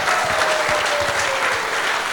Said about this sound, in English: Yeah, we can give these guys a clap.